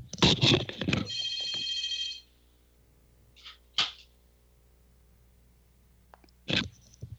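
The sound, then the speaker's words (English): A telephone bell rings loudly in a motel for about two seconds, then cuts off, followed by a few sharp clunks and clicks as the receiver is taken off the hook and set down. “Let me just take this phone off the hook.”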